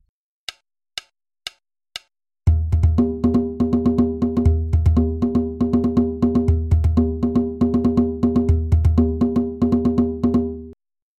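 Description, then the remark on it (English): Four sharp clicks count in, then a drum ensemble, every drummer playing the same basic groove, locks into a steady, busy groove with deep booming low hits and ringing tones, holding an even rhythm before stopping abruptly. “The basic drum groove is the same for every drummer in the ensemble.”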